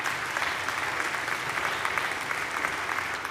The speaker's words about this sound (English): And you're going to be hearing, yeah, go ahead and clap for him.